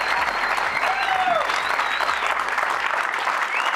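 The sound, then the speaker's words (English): Steady, loud applause from a live audience at the BYU Basketball with Mark Pope show, a dense wash of clapping that holds at an even level throughout, with faint whistles or cheers rising briefly above it. “What a fine crowd we have here today.”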